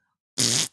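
A single short, loud fart of about a third of a second, with a buzzy, raspy texture and a sudden start and stop, standing alone with no talking.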